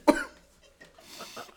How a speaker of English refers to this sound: When did he start coughing? Like immediately.